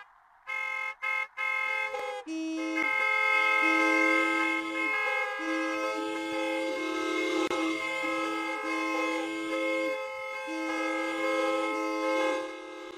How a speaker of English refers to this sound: am I right to assume that after that first smattering of horns, that kind of stayed that way, and then we enhanced it with the other horns? There was like one car. You know what was my tip-off? Right. The Model T horn.